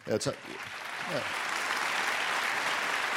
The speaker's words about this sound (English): They're clapping because it's a sad day. It's a very strange audience. They are the best audience in the world.